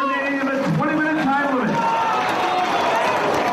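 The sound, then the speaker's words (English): A large crowd at a wrestling match roars and cheers steadily throughout, urging both wrestlers back to their feet, a dense wash of noise that swells once a man's voice talking over the first half falls away. “Crowd urging both these guys back to their feet again.”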